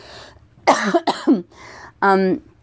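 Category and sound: human body sound, coughing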